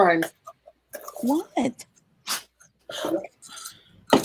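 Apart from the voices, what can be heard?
sneeze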